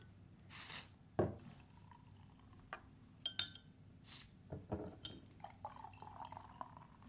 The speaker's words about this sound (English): Whilst she pours our beers for us, and then we'll give them a crack and see what we think.